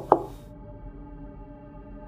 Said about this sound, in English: On the, you knock here on the left-hand side first. Just like a knock.